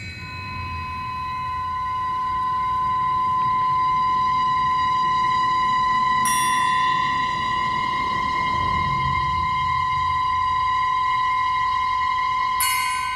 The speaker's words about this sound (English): You're hearing Voiceless Mass by Raven Chacon, a work we featured this season on Future Stops shortly after it premiered. Voiceless Mass was just awarded the 2022 Pulitzer Prize in Music.